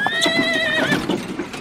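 A horse lets out a loud, drawn-out whinny that wavers at the end, with hooves clip-clopping underneath. Clear, with no one talking.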